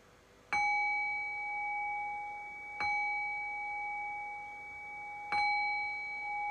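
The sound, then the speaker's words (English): A meditation bell is struck three times at a slow, even pace, each clear metallic chime ringing out and sustaining until the next strike. No one speaks. “And I'll cue that by ringing the bell 3 times.”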